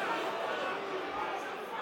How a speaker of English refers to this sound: You can hear what the crowd think of it around me, listeners.